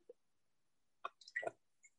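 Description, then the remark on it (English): A short pour of Corajello tequila into a shot glass: a faint tap, then a quick wet gurgle and splash lasting about half a second, followed by a tiny drip. No one speaks. “Okay, a little baby shot. That's what I want. Okay. NXT UK, pour one out for you.”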